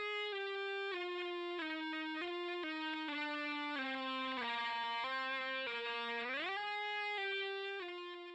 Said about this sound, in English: Then a guitar played with an ebow.